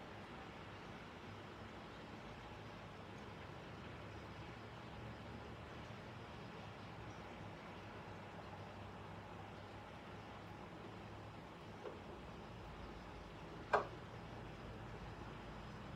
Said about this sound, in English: I've opened my patio door just to be able to hear the sounds of cars driving in the rain and to hear sounds of the rain dripping from the eaves of the building.